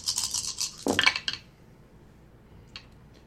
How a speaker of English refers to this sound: That's a lot of dice he's throwing.